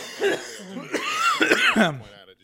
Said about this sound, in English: Shouts out to Dana, who hates the weed coughs.